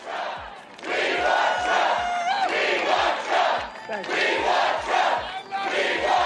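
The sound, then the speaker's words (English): A large crowd chants "We love Trump" in unison, a loud rhythmic roar of many voices rising and falling in regular phrases, with a steady beat of thumps underneath. “A crowd chanting, "We love Trump," is just.”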